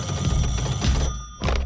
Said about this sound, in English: My phone's ringing, man. Then, Barbie starts ringing.